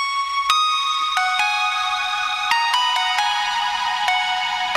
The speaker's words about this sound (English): And it's funny because this song, it kind of started this bell line here that I came up with.